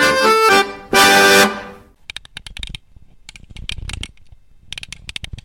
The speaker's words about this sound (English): I will go hang my keys up so that I stop jingle jangling while I'm trying to record, because I don't want to have to edit out all my jingle jangles. I've got keys that jingle, jangle, jingle.